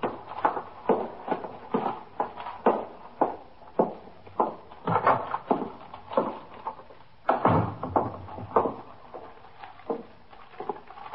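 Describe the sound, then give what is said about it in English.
The front door of a police station house opens and shuts at 3:15 a.m. with a couple of heavier thumps, surrounded by a steady run of regular footsteps crossing a hard floor as a detective carrying a paper bag walks in, with no voices. “Carrying a paper bag, he walked in the front door of the station house, through the back room, and up the stairs to the 21st Detective Squad.”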